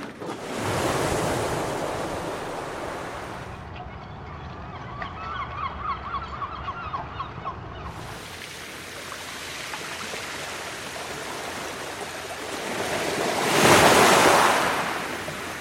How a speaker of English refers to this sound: sounds of the sea, basically, sounds of the ocean. And it's recorded at piers and at marinas and harbors and beaches